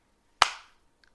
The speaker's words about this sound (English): High five. Look at the sound clipped when we clapped.